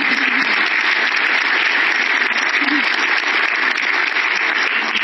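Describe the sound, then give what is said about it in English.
Steady applause from an audience after a talk on city mobility, a dense, continuous wash of clapping at an even loudness with no voices standing out. “Chair, first question, let's give you a round of applause.”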